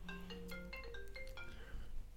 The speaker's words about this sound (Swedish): vår tredje okända deltagare som ringer nu och vill gärna vara med i programmet. Men hon får vänta faktiskt.